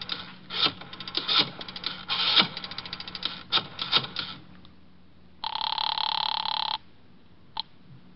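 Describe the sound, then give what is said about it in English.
A telephone is dialed with a rapid series of clicks and clatters, then a single loud, sustained ring sounds, followed by a short click. It is clear, with no talking. “Well, I leaned over, shook my head a couple of times, got the eyes rolling around until I felt them drop into place, then I found my way to the phone.”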